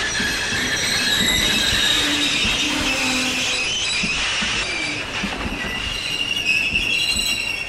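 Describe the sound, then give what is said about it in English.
A train brakes hard as it approaches a damaged bridge, its steel wheels shrieking against the rails in a sustained, high-pitched squeal over a steady rumble, loud for several seconds with no one speaking. “Whether it was the torch warning or that the drivers had seen the damaged bridge from their headlight, they slammed on the brakes as they approached the bridge.”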